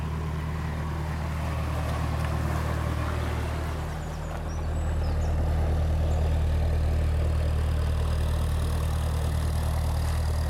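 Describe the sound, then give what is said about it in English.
The diesel engine of the canal boat Hieronymus Bosch chugs steadily on the Basingstoke Canal, a deep throbbing drone that dips briefly partway through before returning at full strength as the boat makes a fairly sharp turn and passes. No one speaks. “So the boat comes across and then does a fairly sharp turn and carries on along the canal.”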